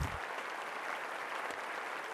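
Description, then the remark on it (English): A steady wash of crowd applause for the video game Metal Gear Solid 2: Sons of Liberty being inducted into a hall of fame, many hands clapping densely and evenly at a fairly loud level for a couple of seconds, with no voices over it. “Round of applause for Metal Gear Solid 2.”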